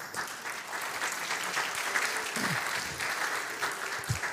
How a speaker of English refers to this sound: A greater clap for the bakers than for the worship team this morning, right? That was, that's awesome.